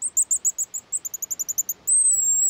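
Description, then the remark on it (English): A rapid series of high, shrill whistling notes from a pigeon guillemot, a small seabird related to puffins, whistling over the waves along the Pacific coast: about fifteen short peeps in quick rhythm, ending in one long sustained whistle, loud with no talking. “These shrill notes belong to a little seabird, the pigeon guillemot.”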